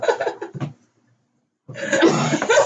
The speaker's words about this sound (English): Besides, oh man, I pulled a muscle in my rib, coughing.